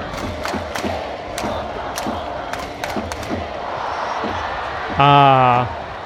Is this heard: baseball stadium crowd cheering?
yes